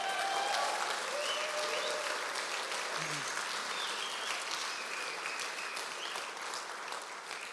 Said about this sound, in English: If you agree, let's give God a cheer this morning.